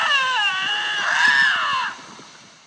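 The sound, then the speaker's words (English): A drawn-out, wavering yowl with a rising and falling pitch, loud, fading off after about two seconds: lynxes screaming at one another before they fight, with no talking. “I only want to listen to Lynx screaming at each other.”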